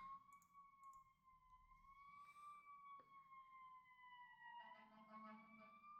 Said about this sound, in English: I was just going to say, I'm surprised there hasn't been more ambulances and stuff yet tonight. And now we're getting one.